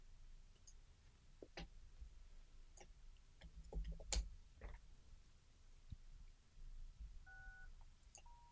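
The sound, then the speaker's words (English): Scattered clicks and taps, then a couple of short electronic keypad tones, steady pitched beeps from an intercom being pressed to buzz visitors in, with no talking. “Okay, there we go. Buzz them in.”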